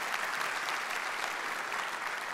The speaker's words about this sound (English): Police officers, which, by the way, we're all thankful for, right? And so, yeah, you can clap for them.